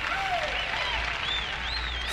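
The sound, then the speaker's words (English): A large crowd applauds presidential candidate Dwight D. Eisenhower as he steps onto the rostrum with his wife Mamie, vice presidential nominee Richard Nixon and his wife Pat. The clapping is a loud, steady wash, with several high, sliding whistles rising and falling above the din throughout. “Eisenhower, the most popular American of the century, accompanied by his wife, Mamie, and his vice presidential nominee, Richard Milhouse Nixon, and his lovely wife, Pat, steps onto the rostrum to receive the plaudits of the crowd.”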